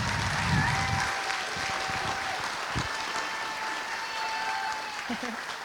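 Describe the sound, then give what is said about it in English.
An audience applauds kids for their hard work on BGMC Sunday, with a steady, dense wash of clapping that holds at an even, moderately loud level for several seconds. A few faint voices can be heard under it. “So please give these kids a round of applause for all their hard work.”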